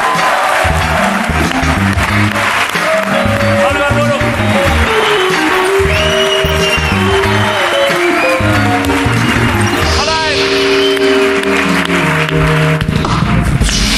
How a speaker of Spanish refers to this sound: Por eso, sin más mierdas, pido un aplauso para Pablo Ibarburu.